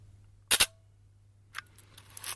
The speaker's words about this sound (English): Alright, this is more my range of shutter speed. A 15th.